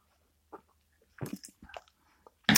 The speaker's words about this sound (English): Having my first sip of London Fog.